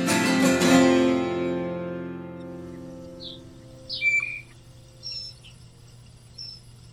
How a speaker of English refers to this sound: Unless you're an bird expert person, you probably don't know what birds are making that sound.